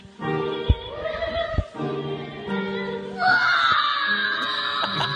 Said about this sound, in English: He's sitting right in front of everybody in the video. Just demonic kids screaming, boys choirs, I search it.